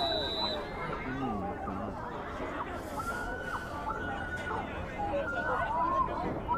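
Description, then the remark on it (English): A large crowd at a sports match roars and chatters as a player is hit, many overlapping voices forming a dense, steady wall of noise with scattered shouts, swelling slightly toward the end. “You hear the crowd right there?”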